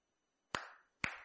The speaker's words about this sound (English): What did you hear? Clap. What did they hear? Father. All of us heard a clap.